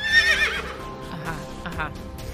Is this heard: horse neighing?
yes